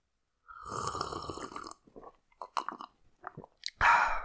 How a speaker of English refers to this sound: but I will not apologize for the sip of coffee I'm about to take, because that's just me, baby.